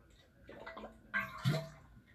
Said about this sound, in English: Sorry, I had to drink some water, guys, because my throat fucking hurts.